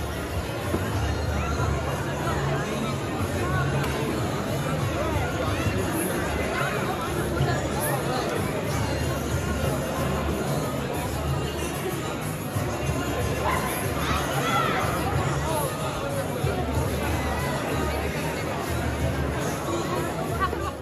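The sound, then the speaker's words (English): A crowd of thousands roars and chants continuously in a dense, steady wash of many voices, loud throughout with no clear pauses, cheering for Hamas at an enormous stadium rally in Dearborn, Michigan. “An enormous rally, thousands of people cheering for Hamas.”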